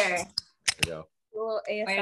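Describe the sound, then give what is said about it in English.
A can of black cherry flavored drink snaps open with a short, sharp crack and a quick hiss, set between stretches of voices talking before and after it. “I'm gonna go ahead and crack this one open.”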